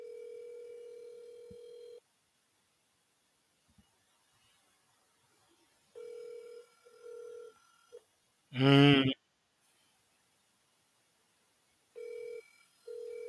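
An outgoing phone call to a cousin rings on the line with no answer: steady ringback tones repeat in spaced bursts with silent gaps, broken once by a short, loud burst of voice or noise.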